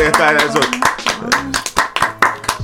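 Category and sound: crowd, people clapping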